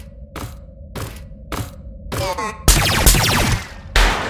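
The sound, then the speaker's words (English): Gunfire: four sharp, evenly spaced shots with a steady hum beneath, then a louder, denser burst of firing with ringing, zinging tails, and a final crack at the end. “Nice shooting.”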